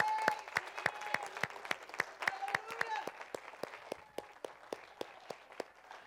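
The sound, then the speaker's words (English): An audience applauds with steady, distinct claps at a brisk pace, a few voices calling out over it early on, the clapping continuing evenly and thinning slightly toward the end. “Give them another hand clap.”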